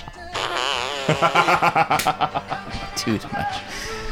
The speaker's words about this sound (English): Oh, this fart machine is giving us too much joy.